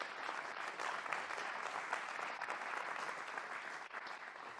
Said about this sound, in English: And so with that, can I just have us give a word of praise through clapping of hands for God's work in and through all of our lives.